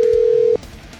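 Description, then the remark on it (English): A single steady telephone tone sounds loudly for about half a second as a call is placed, then cuts off into a quiet line with faint background noise. “So let's see if we can't get Nolan on the phone right now.”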